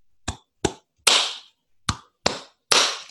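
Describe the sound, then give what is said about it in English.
A ceremonial hand-clap pattern accompanying a chant: two quick, sharp claps followed by a fuller, ringing clap, the whole sequence played twice for six claps in all, loud and crisp with no voices. “And it actually accompanies this, it has a clap that goes with it.”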